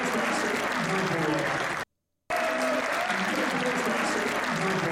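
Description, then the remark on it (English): Sustained applause from a live event crowd in a roughly half-full room watching a remote run, loud and dense with a steady clatter of clapping, broken by a brief silent gap midway before resuming just as strong, with faint murmuring voices mixed in. “But if you could hear the crowd... that would add so much.”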